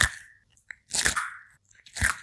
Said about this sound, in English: What is this sound? Is it knuckles cracking? A turtle eating broccoli? A giraffe stepping on bubble wrap? Or a grizzly bear eating potato chips? The answer is a turtle eating broccoli.